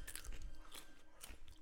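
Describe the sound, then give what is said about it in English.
Crisp crunching as someone bites into the meaty middle piece of a pickle, a few wet snapping bursts in quick succession followed by chewing, no talking over it. “So …'s about to have a pickle. I'll give you the nice meaty middle bit, chunky bit. Thank you. Nice and crunchy.”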